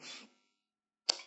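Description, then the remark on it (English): A single sharp sneeze bursts out after a brief breathy rush and a moment of silence, fairly quiet, with no talking. “Bless you.”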